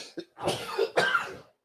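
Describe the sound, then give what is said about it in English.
A close, loud cough right at the microphone: a brief throaty catch followed by two harsh, breathy bursts in quick succession, with no one talking. “Sneeze, cough button.”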